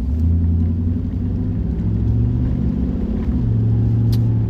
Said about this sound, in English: Driving through. Just narrating my drive.